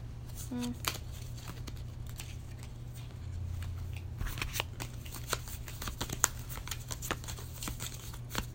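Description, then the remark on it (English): Playing cards being shuffled and handled: a run of crisp, papery flicks and snaps at irregular intervals over a steady low hum, with faint talk in the background. “I don't think there's no reason to shuffle them with this.”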